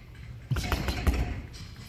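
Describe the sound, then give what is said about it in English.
Light punches land on a punching bag in a quick series of about five soft, dull thuds, fairly quiet, with a faint background hiss between hits. “The punches sounded like this.”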